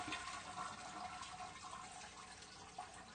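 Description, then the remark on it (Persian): A toilet flushes with a steady, rushing gush of water that runs continuously for a few seconds, not loud, with no voices. “باید قشنگ بری سر توالت برینی سیفونو بکشی رو اینا.”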